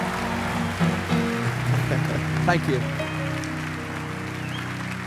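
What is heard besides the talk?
audience round of applause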